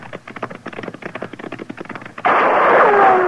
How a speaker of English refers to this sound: Hey, he's shooting at us.